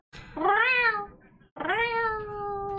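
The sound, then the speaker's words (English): Two drawn-out, rising-then-falling meows in a row, loud, sounding like a person imitating a cat meowing rather than a real cat. “See, this isn't even a real cat.”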